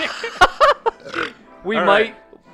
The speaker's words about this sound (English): Enough burping.